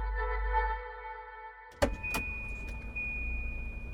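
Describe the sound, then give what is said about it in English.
A car pulls up, its engine humming steadily, then two sharp clunks sound in quick succession before the low idling rumble carries on. “As they cleared the last hurdle, a low fence, a car pulled up and flashed its lights.”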